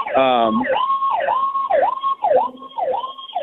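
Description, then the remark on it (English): A fire truck siren wails in quick, repeating rising-and-falling sweeps, loud, dominating the scene with a brief harsh blare at the start. “now of course the fire truck is coming for me. I apologize for the sound in the background here.”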